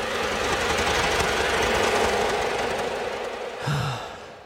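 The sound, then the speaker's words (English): A dense, steady buzzing drone fills the scene, gritty and engine-like with a rough diesel rattle, holding constant before a brief lower swell near the end. “A buzzing noise. Like a diesel engine made of bugs.”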